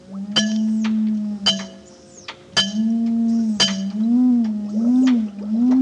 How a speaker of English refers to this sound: Now, tap on the glass.